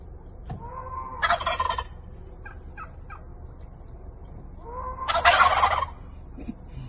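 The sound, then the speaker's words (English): Two loud, rattling gobbles from tom turkeys surrounding a Model 3 car and responding to goat sounds from a boombox, one near the start and a bigger one toward the end, with a few short clucks in between over a low outdoor rumble. “my friend Ronald trapped in his Model 3, surrounded by Tom turkeys, responding to his boombox goat sounds”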